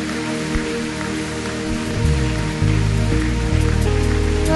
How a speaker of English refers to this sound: Let's give the Lord a big round of applause for all these people.